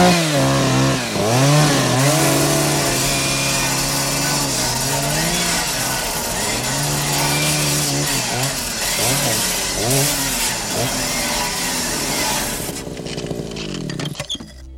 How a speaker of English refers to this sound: And then Carl rocks up with a chainsaw and just fucking lops through all the cables.